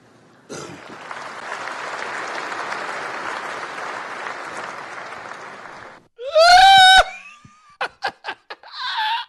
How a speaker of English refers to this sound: Have you ever gotten more delayed? I think they all looked at each other like, so we're going to, are we going to clap